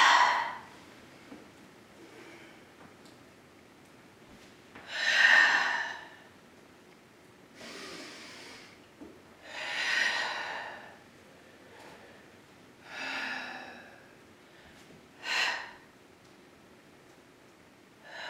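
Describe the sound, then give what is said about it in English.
Slow, heavy breaths drawn in and pushed out through the nose and mouth during a yoga flow, several airy whooshes a few seconds apart, fairly quiet, with no talking. “Wherever you choose to be, you are breathing.”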